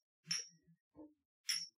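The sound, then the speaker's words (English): Shot glasses clink together in a toast: two bright, ringing high-pitched chinks about a second apart, with a duller knock between them and no talking. “Put them up, guys. Cheers in the middle, boys.”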